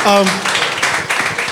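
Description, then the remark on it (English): A group of people clap together in a dense, steady patter of applause, with a brief voice or cheer rising at the very start before the clapping carries on. “Okay, guys, please clap for him. Clap for him.”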